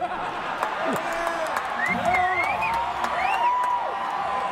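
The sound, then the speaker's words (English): A large crowd roars steadily, with scattered whoops and shouts rising above a dense wash of cheering and clapping that carries on throughout without a break. “Crowd's enjoying this.”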